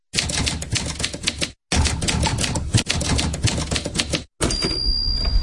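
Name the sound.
typewriter sound effect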